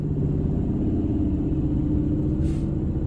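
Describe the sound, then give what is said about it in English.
A passing motorcycle's engine drones loudly and steadily throughout, a deep rumbling growl with a buzzing harmonic tone that holds an even level without voices. “Uh-oh. Motorcycle. Buddy don't like motorcycles. Hold on, hold your ears.”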